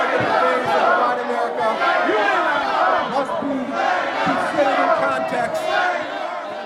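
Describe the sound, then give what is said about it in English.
A large crowd of protesters at St. Louis's old courthouse boos and shouts loudly and without a break, chanting "Slay must go" as Mayor Francis Slay approaches a microphone at the MLK Day celebration on January 21, 2008, many voices merging into a dense roar that swells and dips in rough surges. “Martin Luther King Jr., a crowd began to boo and drown him out.”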